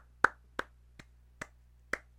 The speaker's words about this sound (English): You're literally the only person clapping.